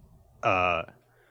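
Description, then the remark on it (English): A single loud, abrupt sneeze bursts out, a sharp voiced blast lasting under half a second before it falls quiet again. “excuse me. Bless you.”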